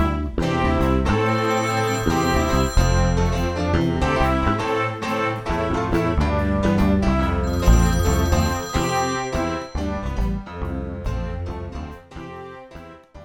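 A phone ringtone plays a bright, melodic tune with a steady beat, loud, running without pause for over ten seconds before trailing off. No voices are heard.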